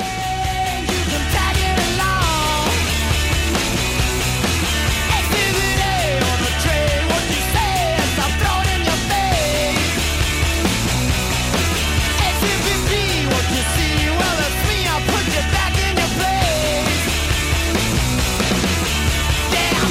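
A loud, energetic rock song plays without a break: pounding drums and dense, distorted guitars under a shouted, wavering lead vocal, at constant high volume and with no talking over it.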